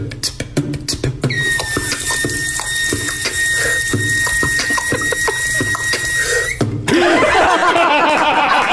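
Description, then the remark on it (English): A bathroom faucet runs with a steady hiss, starting with a few sharp clicks, then carrying a thin, high whining squeal through most of it before shifting into a broader rush of water. “Here's someone's just their bathroom faucet.”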